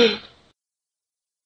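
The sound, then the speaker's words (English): A person blows her nose once: a short, breathy, honking burst that starts loud and trails off within half a second, followed by silence. “is blowing her nose”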